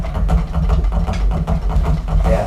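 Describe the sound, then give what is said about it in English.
A long drum roll played with sticks, rapid evenly repeated down, down, up strokes that blur into a loud, continuous low rumble, with faint accents pulsing through it and no voices. “So that's the long roll, down, down, up, basically.”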